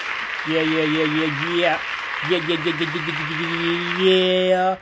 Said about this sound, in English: If you stuck with me up until this point, let's go ahead and give ourselves a round of applause.